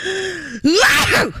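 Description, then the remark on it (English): A voice imitates a dad's big sneeze that winds up: a drawn-out, wavering inhale that dips briefly, then a loud, explosive 'choo' burst that trails off, with no other sound. “My dad's sneeze will shut down whatever's around it. He kind of winds up, so it's like a”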